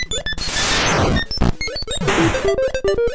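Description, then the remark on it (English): Harsh 8-bit video game sound effects: a clattering burst of noisy crashes sweeping downward, then a string of short, stepped electronic beeps climbing in pitch, loud and without any talking. “But ooh, it's that beeping noise still keeps me up at night.”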